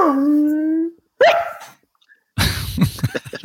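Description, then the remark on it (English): A dog lets out a long, drawn-out whine and a short yelp, falls quiet for a moment, then ends with a burst of rough, scruffy barking. “That was a nice little bark at the end.”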